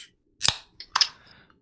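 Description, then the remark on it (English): Cans of Four Pines IPA beer cracking open together: two sharp, bright pops in quick succession, each followed by a brief fizzing hiss, with no talking over them. “Shall we crack them together, boys? Ready to go? Yeah, let's crack them.”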